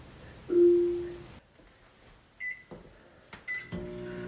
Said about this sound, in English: All right, there you go. You heard the beep, and now the microwave is going, and it's counting down 3 minutes.